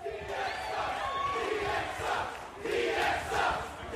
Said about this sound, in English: Well, listen to the crowd. They're agreeing with them 100% here,